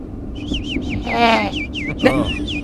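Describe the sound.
A voice imitates a bird call with a rapid series of high, warbling whistled chirps, fairly loud, broken by a couple of brief vocal bursts.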